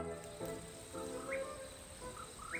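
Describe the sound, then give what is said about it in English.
Quiet night ambience on a long-distance hiking trail: a steady, high-pitched cricket drone carries throughout while a few short, rising calls of a poorwill sound faintly over it. “All night, birds and crickets hum in the dark.”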